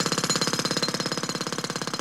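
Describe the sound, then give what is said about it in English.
A road drill hammers away at a rapid, steady rhythm, its loud percussive bursts repeating many times a second, heard alone from 7 metres away. “A road drill 7 metres away.”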